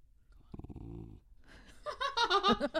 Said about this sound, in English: Oh, see, somebody's walking a dog. Thank God he's here to protect us. See, he's keeping it mellow. He's not doing the high barking. Is that being picked up?